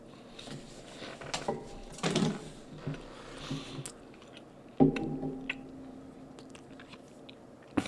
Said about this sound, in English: All right, I'm going to eat the last bite of my sandwich, take a sip of seltzer, and then give you my full attention. But thank you for sharing this sandwich with me.